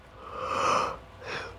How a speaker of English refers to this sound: Ooh, sorry, guys, I keep yawning.